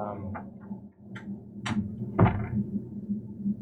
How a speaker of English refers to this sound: Let me just shut this door.